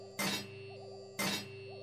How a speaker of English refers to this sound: There must be a better way to fix these machines than hitting them with a wrench.